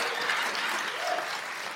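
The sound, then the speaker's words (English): A crowd applauds in a steady, dense wash of clapping that holds at an even, fairly loud level throughout, with no break or fade. “Imagine if you just never stopped clapping.”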